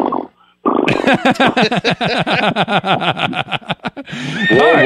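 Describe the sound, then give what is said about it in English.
A loud horse whinny: a shrill neigh breaking into rapid quavering pulses that slide downward in pitch for about three seconds, ending in a breathy snort. “Whoa! You bring your own sound effects.”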